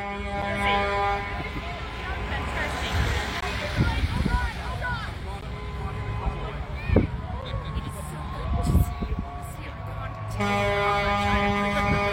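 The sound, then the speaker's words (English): Heavy trucks rumble past, a deep engine roar filling the scene and shaking the ground, while sustained air horns blare over it, with indistinct voices mixed into the noise. “But being here and seeing this and feeling the ground shake when these trucks drive by is giving me shivers.”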